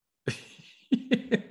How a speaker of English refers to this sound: Oh, good, man. A little cough attack. Hopefully it's not. You're okay.